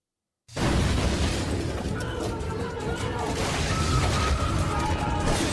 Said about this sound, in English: The meme of the feds raiding. You know what I'm talking about? Where they busting the door down? Yeah, here it is. That's what I'm talking about right here.